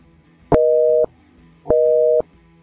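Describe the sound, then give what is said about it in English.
A telephone busy signal plays clearly on its own on a phone line that has been shut down. Two loud, steady half-second tones are separated by a short pause, repeating in an even on-off rhythm with no voices. “They shut the phone lines down when they're not there, I guess. They just aren't turned on.”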